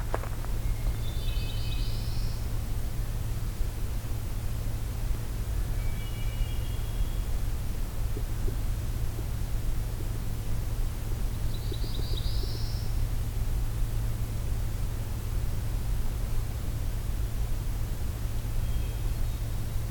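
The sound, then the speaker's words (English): A black-throated blue warbler at Allegheny gives short, buzzy, upward-slurred songs, repeated every several seconds over a steady low rumble of background noise, with no talking. “Oh, I think we have a black-throated blue warbler here.”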